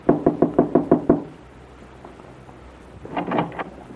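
A quick, even run of about seven firm knocks on the wooden front door of a bungalow at 9 o'clock in the evening, a short pause, then another brief flurry of knocking, with a low steady background hiss and no voices.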